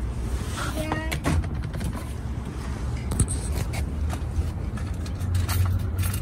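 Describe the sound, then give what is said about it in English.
Keys jingle and clink in a quick series of light metallic clicks over a low steady rumble with faint shuffling and handling noises. “Got keys.”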